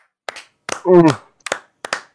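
A brief, sparse round of applause: a handful of sharp, separate hand claps spaced unevenly, with a short voiced cheer rising in the middle.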